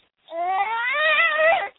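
A teething baby cries in one sustained, wavering wail lasting about a second and a half, high-pitched with a rising and falling strained tone, loud and alone without any talking.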